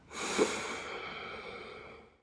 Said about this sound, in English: As I sweep the arms out, I sniff in the air. And then, as I row back and pull the arms back to the body, I release the breath.